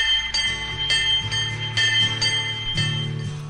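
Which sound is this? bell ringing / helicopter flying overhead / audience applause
bell ringing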